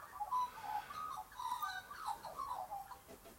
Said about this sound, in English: But first, listen to those birds. When I've spoken to bird experts, ornithologists, I believe is what they call themselves, they say that's territorial. That bird is establishing its territory. So is that other one.